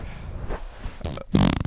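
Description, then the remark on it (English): A loud fart sound made right on the microphone, starting with a few breathy bursts and ending in a buzzing, sputtering blast, with no talking. “You guys want more farts, less farts, no farts, somewhere in between the three of those?”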